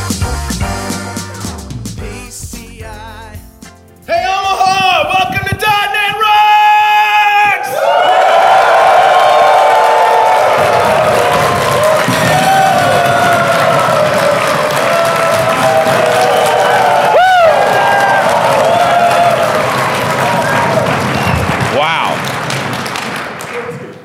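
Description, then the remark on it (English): A large crowd at a .NET developer community gathering in Omaha cheers, whoops and yells continuously, a loud, dense roar of many voices that swells after a brief choppy start and holds steady before easing slightly at the end. “This is the biggest crowd we've had on the road trip so far.”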